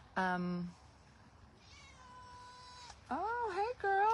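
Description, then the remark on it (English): A pet cat meows several times, fairly loudly: a short cry at the start, a long drawn-out call, then two quick, wavering meows at the end. “Look, our little kitty cat's back.”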